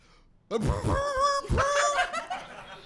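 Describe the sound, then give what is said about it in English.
A person imitates a horse whinny with their voice: a loud, quavering neigh that wavers up and down in pitch over about two seconds, starting abruptly after a brief quiet moment. “A horse.”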